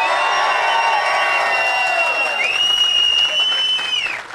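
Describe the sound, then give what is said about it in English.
An audience member in the front row wearing a wrist guard gives a loud, sustained whistle with a rising then level pitch over a dense, continuous roar of crowd cheering and applause, with a few shorter whistles sliding up and down. “There's someone with a wrist guard in the front row whistling.”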